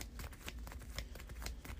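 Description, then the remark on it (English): A deck of cards being shuffled during a card game, a quick, continuous run of soft papery flicks and riffles lasting under two seconds, fairly quiet, with no talking. “Let's shuffle the deck.”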